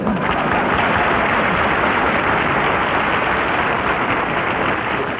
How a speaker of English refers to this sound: that applause is liable to tip off Cactus Face.